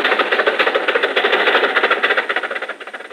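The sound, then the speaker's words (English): A car engine runs steadily at low speed with a rapid, rhythmic rattling pulse as the car drives into a crowded drive-in theater, loud and continuous throughout with no voices. “Come on, Jack. Drive inside.”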